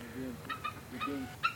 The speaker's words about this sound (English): The mother eagle protests the intrusion with a series of clucks, squeals, and whistles.